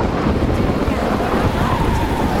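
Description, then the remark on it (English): Steady, loud storm wind roars without pause, a dense low rumble with gusty buffeting and a faint rushing hiss like surf or water in the background. No one speaks. “Anyway, it looked like a storm was coming.”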